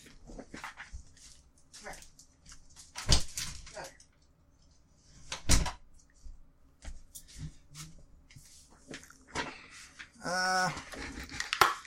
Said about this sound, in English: Fucking dog. Hang on a sec. I just gotta let him out of the office.